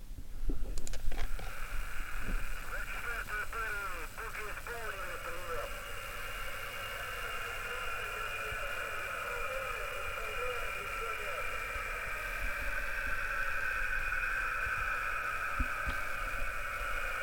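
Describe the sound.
Steady whooshing radio jamming noise fills the whole stretch, a loud hissing band of static over radio communications recorded during an ongoing invasion. Faint, garbled voice transmissions and brief warbling tones early on are partly buried beneath it.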